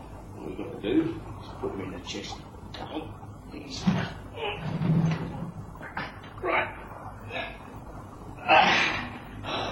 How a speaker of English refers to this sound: The two men lit a lantern. There, Percy. They're kneeling on the floor, about to open a trap door in the floor.